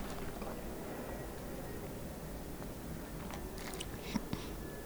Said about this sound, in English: Hold on. Take a sip of coffee.